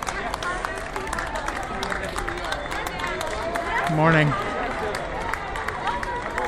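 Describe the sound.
Steady applause outdoors from cast members up and down Main Street USA, applauding and waving, with dense overlapping claps and background chatter; a voice briefly speaks a greeting over the clapping near the middle.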